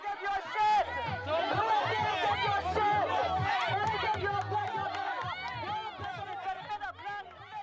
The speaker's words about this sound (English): This is one of the pro-affirmative action activists with a microphone, with anti-affirmative action supporters chanting USA in the background.